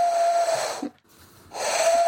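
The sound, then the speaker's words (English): Someone imitates a train whistle: two loud, airy, hissing blasts carrying a steady mid-pitched tone, split by a short breath-like pause. No one speaks. “That kind of was like a train.”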